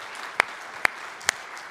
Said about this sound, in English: Wow, wow, wow. Well, hey, look, they already applauded, so they're already with us, right?